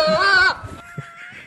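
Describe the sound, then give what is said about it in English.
A goat lets out a loud, wavering scream lasting about half a second, followed by faint background murmur and quieter tones trailing off. “Or was that a goat?”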